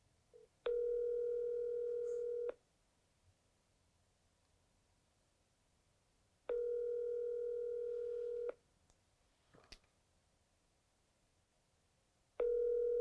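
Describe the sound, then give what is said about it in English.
A telephone call placed to a Lowndes County Sheriff's deputy rings out over the receiver: steady, buzzy ringback tones about two seconds long, repeating with four-second pauses, three rings in all, with a faint click between them and no voices. “Okay, so we're calling”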